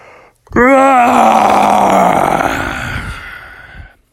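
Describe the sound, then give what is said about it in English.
A single long, exaggerated yawn voiced by a person, rising with wavering pitch then sliding down into a drawn-out groaning exhale, loud, lasting over three seconds, performed as the story character Bubby waking up on a Saturday morning. “On this classic Saturday's morning, Bubby woke up and he gave out a big yawn.”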